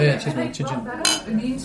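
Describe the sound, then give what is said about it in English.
A single bright clink of two beer glasses touching in a toast at the Flask, short, set against a low murmur of voices and background chatter. “Yeah, cheers.”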